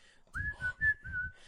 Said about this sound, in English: Oh, I wanted you to whistle that part.